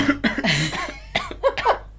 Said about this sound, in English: Sorry. I didn't hear that. I had to cough.